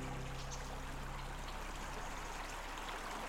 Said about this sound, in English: So this is the River Mole. It's a very fast flowing river, and if there wasn't something in my way to help me get over this, I'd be a bit stuck at this point, but thankfully there are some stepping stones which is going to help me to cross this river